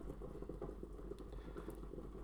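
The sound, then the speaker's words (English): A pot of water boils steadily on a stove, a dense, continuous bubbling and gurgling that stays at an even, fairly soft level for the whole moment, with no voices over it. “So much boiling.”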